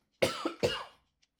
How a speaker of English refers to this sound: Let me cough. Gotta cough.